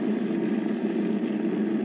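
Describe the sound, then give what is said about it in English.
Heavy bomber aircraft engines drone steadily and loudly in flight, a constant low rumbling hum with no breaks or change in pitch, with no voices; engines 1 and 2 run with cylinder head temperatures over the red line. “These engines have got to get us back.”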